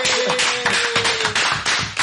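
Audience applause welcoming a guest, a dense, steady wash of clapping that fills the two seconds without pause, with a faint sustained whistle-like tone running underneath during the first half.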